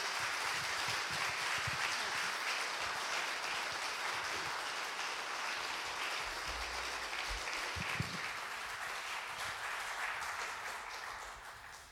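A sustained round of applause from a crowd, many hands clapping in a dense, steady wash of noise that holds for about twelve seconds before tapering off at the end.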